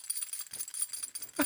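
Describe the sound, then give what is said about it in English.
A keychain carrying an oversized Land Shark steel piece jangles in quick, irregular bursts of bright metallic clinking and rattling, with a louder shake near the end and no voices. “It's too big to be on a keychain, but it's been there for how long?”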